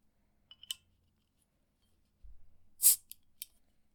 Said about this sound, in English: All right, so excuse all the background noise here while I open my beer.